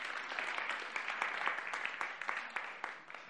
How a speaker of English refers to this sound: And a big round of applause for my helpers as well. Thank you very much. Well done.